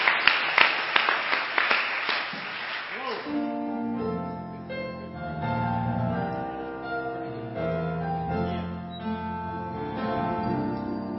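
An audience claps together in a burst of many hands for about three seconds, sharp and fairly loud, before the clapping fades into sustained, tonal music that carries on to the end.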